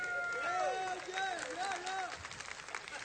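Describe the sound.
An audience claps steadily for a car battery for a few seconds, a dense patter of many hands, with voices calling and cheering over the top before the clapping thins out.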